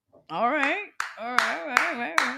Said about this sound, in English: Man, that's a hard clap.